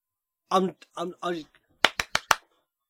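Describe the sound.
A voice sings a short wordless phrase, then four sharp hand claps follow in a quick, evenly spaced rhythm, fairly loud, with nothing after.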